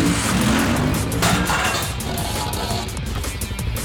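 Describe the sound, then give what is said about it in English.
A vehicle engine revs loudly and steadily, a thick continuous roar with a throaty low rumble, as if accelerating hard, with no voices over it. “You're on a bike, we're in a car.”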